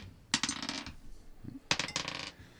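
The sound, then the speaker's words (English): During a tabletop role-playing game, dice clatter and tumble across a hard tabletop in two separate bursts, each a quick rattling roll that settles, with no talking. “Well, dice.”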